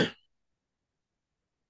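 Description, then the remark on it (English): A single short, harsh throat clearing bursts out at an extremely high volume right at the start, then cuts off into silence for the rest of the moment. “Hopefully the very front end of the video caught me clearing my throat at an extremely high volume.”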